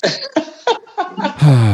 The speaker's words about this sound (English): Yeah, especially because see how she's coughing like that? It's great that it's virtual, because then I'm guaranteed to survive. She really has COVID. She does.